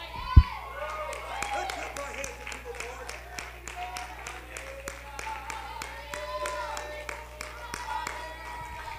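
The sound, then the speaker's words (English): Steady rhythmic hand clapping from a group keeps a fairly even beat throughout, mixed with a sustained musical drone and voices in the background, following one sharp loud hit at the start. “Your hand clap is just not a nonchalant hand clap.”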